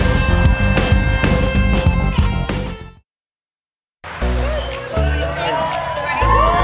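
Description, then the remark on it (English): Loud Friday studio crowd at a TV show pep rally cheering and whooping, with voices rising over a steady roar, comes in after a blast of upbeat music and a one-second silence. “We are back with a happy Friday crowd.”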